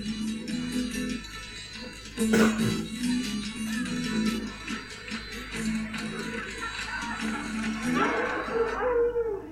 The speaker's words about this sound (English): Here come those scary dogs, my sister. Scary dogs! Run! Yeah, that's a bit terrifying.